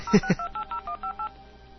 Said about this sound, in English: I'm hearing it ringing, and I'm like, my phone's not ringing.